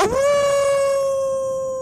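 A single wolf howl rises quickly and holds a steady, clear pitch, sustained and loud for nearly two seconds before tapering slightly.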